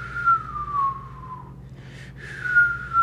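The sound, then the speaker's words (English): Someone whistles a thin, wavering tone that imitates wind, in two long gliding phrases separated by a short breathy gap, over a steady low hum. “That's the fucking wind whistling between your dick and balls.”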